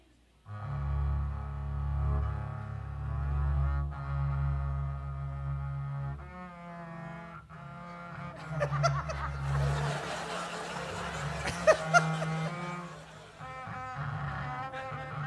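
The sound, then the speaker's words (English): A bass guitar imitates Scottish bagpipe music, holding a loud, steady low drone while notes shift above it. Later the playing turns brighter and busier, with a couple of sharp accents. “But unfortunately, there isn't any beautiful Scottish bagpipe music, and it would be difficult to replicate the sound of the bagpipes on the bass, but I can try.”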